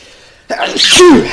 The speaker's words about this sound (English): Well, I've got a sneeze coming.